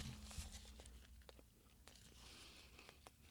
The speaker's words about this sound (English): The chewing sounds are so funny to me.